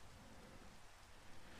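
Steady rain pours down in an even, dense hiss with a soft low rumble underneath, like far-off thunder. It's fairly quiet and continuous, with no voices.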